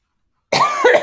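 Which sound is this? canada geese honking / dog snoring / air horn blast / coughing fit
coughing fit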